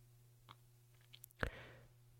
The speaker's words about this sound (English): Typing.